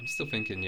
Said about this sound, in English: That's my fire alarm. Nothing bad. My mum has left the door open when she's cooking. I think.